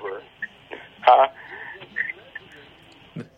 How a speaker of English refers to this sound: He didn't say anything. It's just static.